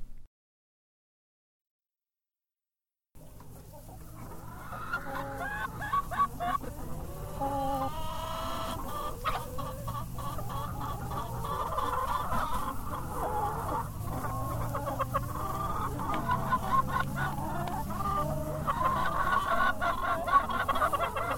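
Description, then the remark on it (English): A rooster clucks and murmurs in a steady, busy stream of short calls, with faint background farmyard noise and no talking, after about three seconds of silence. “That's a proud rooster”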